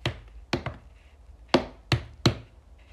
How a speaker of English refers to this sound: Yes, you could hear typing. I'm sorry, that's annoying.